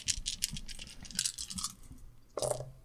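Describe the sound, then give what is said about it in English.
Four dice clatter and rattle in a quick run of small hard clicks, moderately loud, then finish with a sharper, louder clack as they tumble to rest, landing on four twos. “We're rolling some fat dice out here.”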